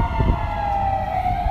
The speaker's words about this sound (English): Well, this is common in LA. Sirens.